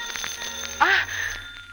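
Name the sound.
telephone ringing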